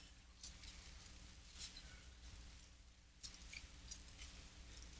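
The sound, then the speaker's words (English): Soft, papery rustling of many thin Bible pages being turned as listeners look up 1 John chapter 5, with scattered brief crinkles rising over a low room hum. It sounds faint and spread out, like a crowd flipping through books. “Love to hear those pages of the Bible rustling.”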